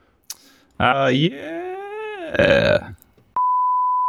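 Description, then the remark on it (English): A drawn-out, wavering vocal groan, then a sharp steady electronic beep that cuts in abruptly and holds at one pitch, loud, until the end. “Beep.”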